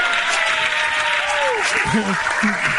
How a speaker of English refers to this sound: Thanks, buddy. Round of applause. Chinese food is here. Thank you, sweet.